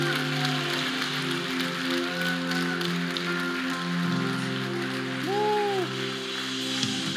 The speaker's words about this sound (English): Won't you clap?